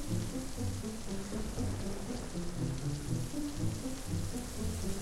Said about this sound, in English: There's the rumble of rain.